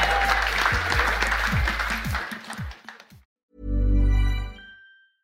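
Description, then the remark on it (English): A live audience on a Friday night applauds themselves loudly, dense clapping with some whoops, then fades out after about three seconds; following a brief silence, a loud, low sustained tone swells and ends. “Give a huge round of applause to yourselves on Friday night.”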